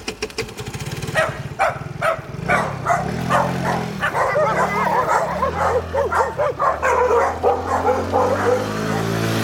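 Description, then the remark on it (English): Several dogs bark loudly and repeatedly in overlapping bursts, with some higher yips mixed in, chasing away the mailman, over a low engine rumble running through the whole recording. “Good doggies chasing him away, but the mailman's been and dropped off some beauties.”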